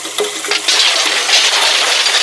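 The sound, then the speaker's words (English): A few sharp metallic clinks give way to a loud, sustained rushing clatter as a garage door is opened and a heap of empty beer cans tumbles and spills out all at once. No one speaks. “Look, this is a recording I made of me opening my garage door.”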